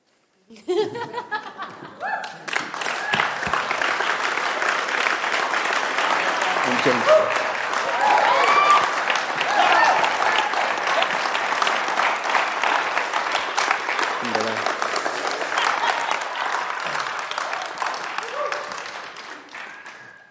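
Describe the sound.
A large crowd claps steadily and loudly for about twenty seconds, the sustained applause dense and even, with a few scattered voices and cheers mixed in before it tapers off at the end.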